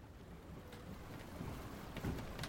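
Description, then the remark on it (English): A boat pushes through open water in sea fog, heading to a hidden dock, its steady low rumble joined by splashing swells and gusts of wind across the microphone. No one speaks. “Theo and their companions used the sea fog to mask their journey to the hidden dock beneath the old Canicus house”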